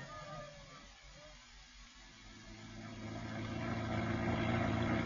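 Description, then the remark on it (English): A car engine hums steadily with a low rumble, growing louder and more pronounced over the last few seconds as if revving up or pulling away. “I'll get into the car.”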